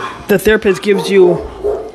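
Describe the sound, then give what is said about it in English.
Dogs bark in a quick burst of several sharp, yappy barks, one after another, then trail off into a quieter whine-like tail. “Sorry, my dogs.”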